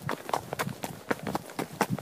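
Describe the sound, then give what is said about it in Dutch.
A dark-blond horse's hooves clip-clop in a steady, quick rhythm as it is ridden through forests and prairies with the first snow on the ground, each hoofbeat sharp, with no voices over it. “Zodat ik vanaf mijn donkerblonde ros kan genieten van de prachtige natuur.”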